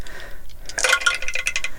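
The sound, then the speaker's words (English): Dice clatter across a tray, a quick cluster of hard clicks and rattles that starts after a brief quiet moment and continues for about a second, with no talking. “I need to get my bigger dice tray.”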